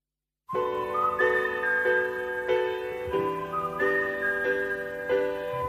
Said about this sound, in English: We need to bring whistling back.